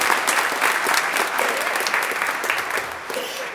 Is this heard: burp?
no